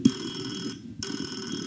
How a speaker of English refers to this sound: There's that phone that won't stop fucking ringing. Let's answer it.